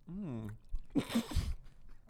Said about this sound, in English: Doing ASMR for you guys. Mm. Do you guys like the sound of when people chew?